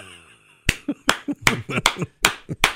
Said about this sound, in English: And that's not me clapping for enjoyment. That's me imitating. That's dad going to church.